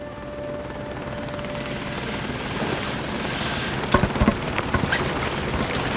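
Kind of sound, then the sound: vehicle, helicopter rotor and engine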